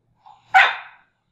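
A dog gives a soft little grunt and then one loud bark that fades out quickly. No other sounds or voices accompany it.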